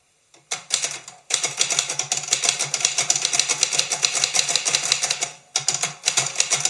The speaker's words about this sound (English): Gotta love the sound of the typewriter